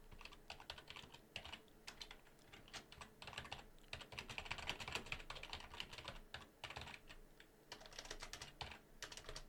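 Rapid, steady clacking of keys on a computer keyboard, close and fairly loud, with bursts of fast typing and brief pauses throughout, no voices.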